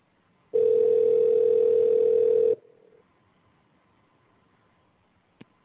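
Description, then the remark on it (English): A single loud ringback tone from an outgoing phone call placed to add a guest to the call: one steady, buzzy two-second ring, then a quiet pause with faint line hiss and a brief click near the end. No one speaks. “And it's ringing.”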